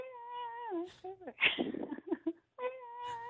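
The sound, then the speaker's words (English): A person mimics a cat over the phone, giving drawn-out, wavering meows with a short burst of louder, noisier vocalizing in the middle, followed by another long meow; fairly loud. “I just feel that animal sounds created on the bone phone don't happen often enough when I check the inbox.”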